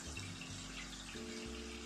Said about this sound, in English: I'm just clearing the water and putting fresh in the, before I smoke. So for any of you that hear that noise, I am not going to the washroom. That is just me getting the water going.